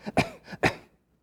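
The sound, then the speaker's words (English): A person demonstrates uncomfortable coughing, giving two short, deliberate coughs in quick succession, fairly loud, each preceded by a small throaty catch, then silence. The coughs sound staged rather than natural. “I've been in places where I'd start talking about Jesus and people start coughing.”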